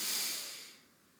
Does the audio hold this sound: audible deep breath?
yes